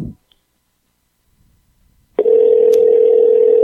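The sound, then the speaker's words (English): A phone call being placed: a short low thump and a stretch of quiet, then a loud, steady telephone ringing tone starts and holds unbroken to the end, with no voices. “Then just call him. I'll call him.”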